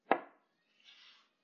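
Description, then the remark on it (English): One sharp, hollow knock on a wooden door rings out and decays quickly, followed by a softer, brief scraping or rustling sound about a second later; no one speaks. “And out of nowhere, I hear just one knock on the door, something like this.”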